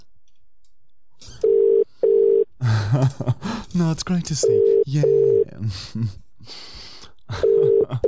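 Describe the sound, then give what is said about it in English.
A telephone ringback tone on an outgoing call to a cleaning service, sounding in paired double-burst rings that repeat steadily, with people talking over and between the rings. “It's ringing.”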